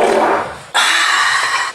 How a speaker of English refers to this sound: I like the exhale. Yeah, after every fart.